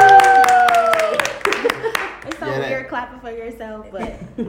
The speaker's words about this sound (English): You're clapping for yourself, but we should always.